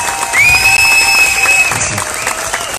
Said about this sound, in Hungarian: Ennek a sztorinak adjunk már egy tapsot, gyerekek.